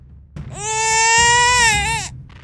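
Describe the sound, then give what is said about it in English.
A baby lets out one loud, shrill wail lasting about a second and a half, holding a steady high pitch before dipping and cutting off, over a low background rumble. “A baby screamed.”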